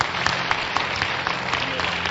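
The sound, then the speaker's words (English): An audience applauding together for Jesus, a steady wash of many overlapping claps at even loudness, with no talk over it. “Clap for Jesus.”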